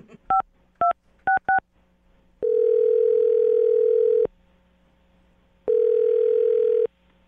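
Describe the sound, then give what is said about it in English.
As a phone number is dialed on a telephone, four quick keypad tones beep in succession, followed by two long, steady ringback tones separated by a pause, clear with no talking. “I'm dialing his phone number right now.”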